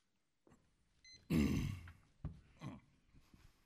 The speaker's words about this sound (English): Sorry, not my best first word, clearing my throat. I apologize for that.